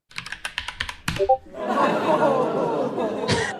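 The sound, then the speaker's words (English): A quick run of clicks like typing gives way to a host voicing crowd noises himself: a steady, moderately loud murmur of chatter and chuckling that lasts about two seconds. “how do you find all of these crowd noises? He does them himself. He's all of those.”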